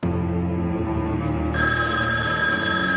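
A telephone rings loudly in a film clip, its bright, steady trilling tone starting midway and sounding over a constant low, droning background. Nobody speaks.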